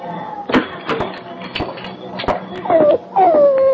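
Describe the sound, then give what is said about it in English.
A mangy hound whimpers in two high, drawn-out whines that slide downward near the end, after a run of scattered thumps and clicks, moderately loud. “is this the dog?”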